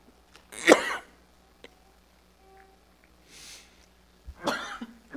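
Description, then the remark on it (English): Two sharp, loud coughs, one near the start and another near the end, separated by a quiet stretch with a faint breathy rustle between them. “I finally took a cough drop for a cough.”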